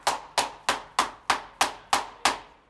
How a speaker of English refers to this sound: She's banging her shoes so that they are quiet. Extra energy release.